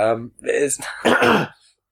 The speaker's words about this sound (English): I can't clear my throat because I'm a terrible person who smokes.